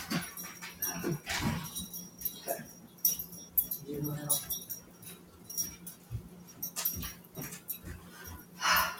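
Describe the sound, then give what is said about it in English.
A dog whimpers and whines in short, scattered bursts, wanting to be let into the house, with faint rattling and jangling noises in between. “My dog, he is so funny. Anytime I do anything spiritual or talk about it or anything, he's like very, here I am and I want in the house, out of the house, back and forth, here I am.”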